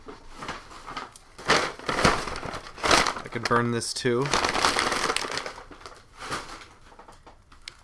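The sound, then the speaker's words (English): Loud crinkling and crumpling of a brown Publix paper bag runs in irregular bursts across the whole recording, like a paper bag being crushed, with a man briefly speaking partway through. “So that's the end of the brown Publix paper bag.”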